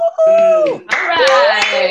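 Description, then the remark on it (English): Several participants on an online call unmute themselves and cheer with rising and falling whoops, joined by a few scattered claps, loud and lively over about two seconds, celebrating committing to a challenge. “And give us some cheering.”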